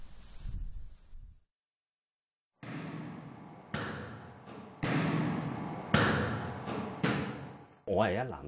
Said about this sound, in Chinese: 我係一藍田出世啦，我諗唯一一樣聲音我會記得嘅就係每一層啦，一出lift好大嘅空間，咁所以好多小朋友去嗰度玩嘅，玩咩咧？玩波啊，打到上去咚咚咚咚打波嗰啲聲咯。